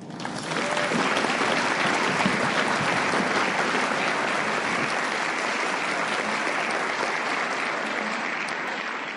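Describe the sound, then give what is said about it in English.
A meeting audience applauds steadily for about nine seconds, a dense wash of many hands clapping at a fairly even, loud level that tapers only slightly toward the end. “Can you guys all help me give Joe another round of applause, please?”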